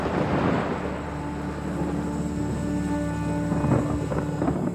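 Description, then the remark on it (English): Deep, continuous rumbling of thunder from a storm brewing outside, rolling steadily at moderate loudness with a windy, blustery wash over it. No voices are heard. “I hope you're feeling brave, because not only does it look like there's a storm brewing outside”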